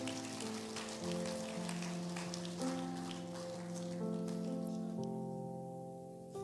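A church audience claps steadily, a dense patter of many hands over sustained organ-like chords that shift pitch. The applause stays fairly even in loudness and thins out near the end. No one speaks.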